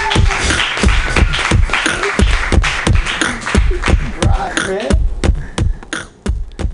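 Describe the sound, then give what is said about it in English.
An audience at a comedy show breaks into loud, sustained applause for a comedian being introduced, a dense patter of many hands clapping at once, with scattered cheers and voices mixed in before it starts to thin out near the end. “Everybody clap your hands wildly for”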